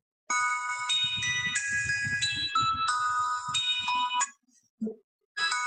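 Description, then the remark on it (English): A bright, electronic Good Humor ice cream truck jingle, the new version, plays a bouncy, stepping melody of high chiming tones for about four seconds, cuts off briefly, then starts again at the end. “Good Humor, the new ice cream truck jingle.”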